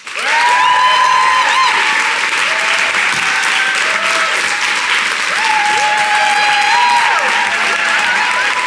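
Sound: audience applause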